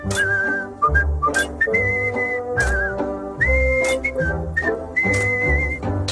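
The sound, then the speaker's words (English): Someone whistles a cheerful melody while working, holding clear sustained notes that step up and down, loud, with a full musical accompaniment with bass and percussive hits underneath. “Good idea: whistling while you work.”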